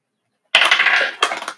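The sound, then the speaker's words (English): A twelve-sided die hits a tabletop and clatters across it in a quick burst of rattling taps, then lands with a final sharper knock and settles, showing a 12. Fairly loud, no voices. “Can you grab me a dice? What kind? Any kind. How about a D12? Sure. Go for it.”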